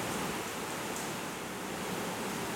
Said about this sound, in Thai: มานั่งรอฝนหยุดจะบ้า